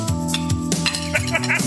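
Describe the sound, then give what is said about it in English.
Dishes clink and clatter during washing, several sharp knocks with ringing, sustained tones from plates and pans over a steady, fairly loud background. “I will say, you washed in the background.”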